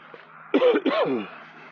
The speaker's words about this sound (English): Sorry for coughing in your ear. I tried to cover my hand.